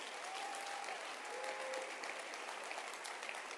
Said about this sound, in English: Clap your hands for them again.